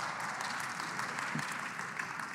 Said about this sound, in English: Wow, a clap from Calvary? Thank you.